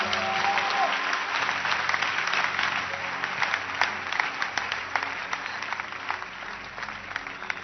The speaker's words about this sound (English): Clap for Jesus.